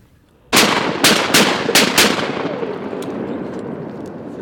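During a duck hunt, five loud shotgun blasts are fired at flying ducks in quick, uneven succession, each a sharp boom trailing into a rumbling echo that fades slowly after the last shot. No one speaks.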